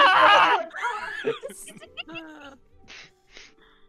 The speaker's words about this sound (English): My neighbors just heard me scream. I don't know what they're gonna think. I'm sure they hear you every week, and they're just like, "Is he dying? What is he doing?"